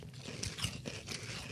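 Crisp crunching as someone bites into dry Cinnamon Toast Crunch Churros cereal, pieces shaped like mini churros with a little hole, and chews, a string of short brittle cracks repeating every fraction of a second, fairly quiet with no talking.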